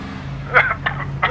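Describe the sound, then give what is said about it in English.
A steady low engine rumble of nearby road traffic runs throughout, heard from a sidewalk by the road outside a Quick and Go gas station. A person clears their throat and coughs in three short bursts over it, a coughing fit caused by the traffic exhaust. “Ugh, my exhaust from the traffic was killing me.”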